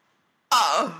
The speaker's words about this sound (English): Oh! I was just about to say gasp. I was literally gasping. I couldn't get sound out. That's shocking.